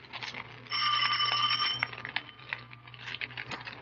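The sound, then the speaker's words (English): A doorbell at a dealer's house rings once in a steady, bright buzzing peal lasting about a second, followed by faint clicks and rustling over a low background hum. No one speaks. “Ring the bell.”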